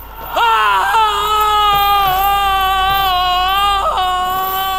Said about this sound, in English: At this, the spirit raised a frightful cry and shook its chain with such a dismal and appalling noise that Scrooge held on tight to his chair to save himself from falling in a swoon.